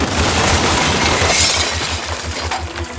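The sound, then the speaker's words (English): A cement ceiling crashes down right above a chair, a loud, continuous roar of breaking and falling debris with rapid rumbling thuds underneath, lasting about three seconds with no voices. “As he got up and reached for the door, that instant the cement ceiling right above his chair came crashing down.”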